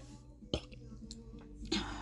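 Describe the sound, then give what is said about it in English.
A short, low, guttural burp erupts once, fairly quiet, followed by soft breathy noises and another brief rough burst near the end. “That was a gross little burp there.”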